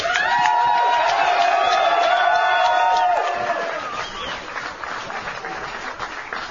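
A live audience at a radio show broadcasting live from the Metro in Melbourne breaks into loud applause and cheering, with rising whoops and shouts over dense clapping for about three seconds, then the noise fades to softer scattered clapping and crowd murmur.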